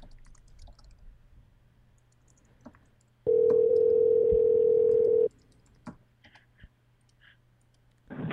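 A single loud ringback tone from an outgoing phone call to a friend who is being added to the call. It buzzes steadily for about two seconds, then cuts off into a quiet line with faint clicks and a low hum.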